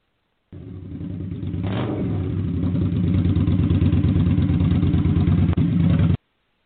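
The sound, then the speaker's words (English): A motorcycle with a sidecar revs and accelerates as it rounds a curve, its loud, steady drone climbing in pitch and intensity over several seconds with a dense, throbbing harmonic texture before cutting off abruptly. “roared in delight as she rounded a curve at the last minute on her motorcycle”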